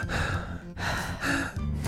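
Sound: voice imitating heavy breathing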